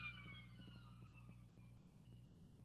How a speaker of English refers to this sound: I love that a siren just went by at that time.